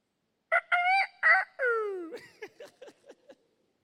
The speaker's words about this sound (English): You have no idea what we experienced when we were growing up, especially in the morning. Nobody woke you up from bed. The chicken did.